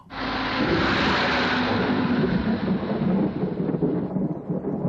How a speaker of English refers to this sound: It's really nice and atmospheric as well, having this storm environment for so much of it.